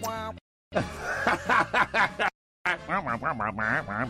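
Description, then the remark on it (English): A cartoon teacher's garbled, nasal wah-wah voice effect babbles in quick, choppy syllables like a muted horn imitating speech, in two close bursts separated by a brief silence. “and the teacher who talks funny.”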